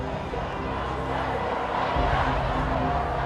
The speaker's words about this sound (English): We did pass protesters, so you could hear the din of the people.